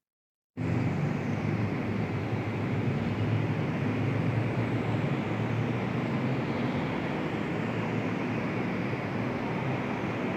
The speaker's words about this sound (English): This has more of the engine noises and atmospheric sounds from the beginning.